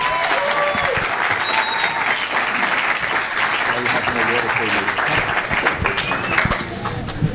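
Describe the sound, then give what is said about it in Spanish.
Sustained applause from a large audience, welcoming a pastor, fills the space, dense and steady for several seconds, with a few scattered voices and cheers faintly mixed into the clapping. “con su aplauso, por favor.”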